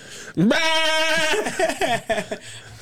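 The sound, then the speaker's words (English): A goat, one of about 40 goats eating up bushes and flowers, bleats loudly, one long wavering cry that breaks into a few shorter quavering bleats before fading, with no talking over it. “I've never seen 40 goats. Goats were eating up all my cool bushes and flowers and stuff.”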